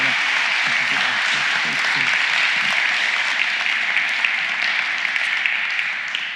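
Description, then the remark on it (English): A crowd of people claps steadily, a dense, even wash of applause that holds loud throughout, with faint voices murmuring underneath at the start. “Guys, can we give these guys a round of applause?”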